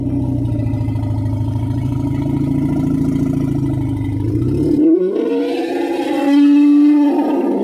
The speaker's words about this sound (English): The bass sound for TIE fighters is elephant growls. Elephant growl.